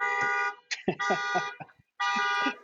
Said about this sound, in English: There's the alarms are sounding right now.